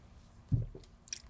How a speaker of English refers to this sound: Was your gulping too loud to hear me insult you?